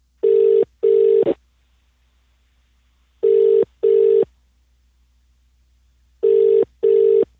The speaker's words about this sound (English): I just tried to phone this person and they didn't answer that phone, so I'm going to try another phone now.